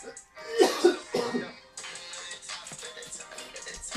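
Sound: coughing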